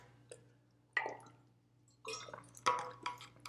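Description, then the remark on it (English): A few short, wet liquid sounds, like someone sipping and handling a drink of water, with brief gaps between them over a steady low electrical hum. “One second, get some water.”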